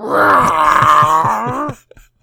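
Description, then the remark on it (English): A drawn-out, wailing meow, likely a human voice imitating the distinctive meow of a cat named Akira, holds a steady pitch for nearly two seconds before breaking off, followed by a couple of faint short sounds. “And then he says that Akira meows differently.”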